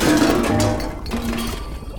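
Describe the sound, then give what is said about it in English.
A loud crash and clatter of a huge precarious stack of pots and pans tumbling down in a kitchen, a dense burst of metallic clanking and ringing tones that rattles on for about two seconds before easing off. “So, there's a big pantry full of beans, and there's a huge precarious stack of pots and pans.”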